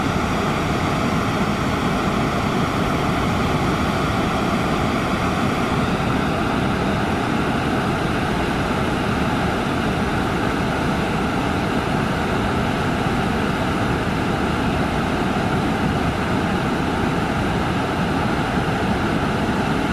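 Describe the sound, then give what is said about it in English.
A waterfall roars steadily and loudly for the whole stretch, a dense, unbroken rush of crashing water, with no voices or other sounds breaking through. “Let the roar of this waterfall immolate my soul and purge me of my sins.”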